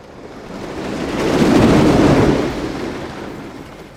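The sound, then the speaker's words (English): A wooden roller coaster thunders past, its broad rumbling roar swelling to a loud peak midway and then fading as the train moves off. No voices are heard. “Like, so here's the Judge Roy Scream, which is one of the wood ones.”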